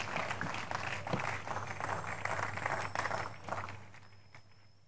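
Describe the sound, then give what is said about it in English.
An audience at a church prayer service gives the Lord a big clap, a dense, steady burst of applause for about four seconds before it thins out and fades away, with a low hum underneath. “Give the Lord a big clap of...”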